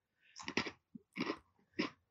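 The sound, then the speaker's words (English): Crunching of crispy, spicy Inferno-flavor snack chips being chewed, with three bursts of loud, crackly bites separated by short pauses and no talking. “They are crunchy.”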